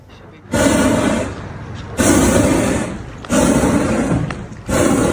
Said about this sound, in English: Sounds like a whale breaching. That is a hot air balloon forced to crash land in the middle of his suburban neighborhood. Mark Kersey credits the pilot, though, for bringing it down in a parking lot, narrowly missing the houses.